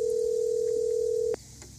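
A steady, loud telephone tone hums continuously for over a second, then cuts off abruptly, followed by faint line noise and a soft click-like blip.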